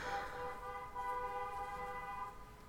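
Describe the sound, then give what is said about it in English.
A car horn blares in one long, sustained honk lasting a few seconds, loud, with a brief dip midway before it continues steadily over faint road noise. “Car horn.”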